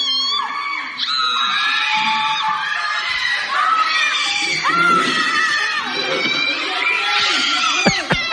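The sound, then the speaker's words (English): Several six-year-old children at a party scream and wail in panic at once after seeing Bigfoot appear outside the window, high-pitched cries overlapping loudly and continuously throughout, with a few sharp knocks near the end. “They all start crying, screaming, running for cover. They're terrified.”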